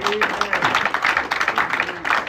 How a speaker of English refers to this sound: Why don't you just go ahead and just give God a hand clap right now.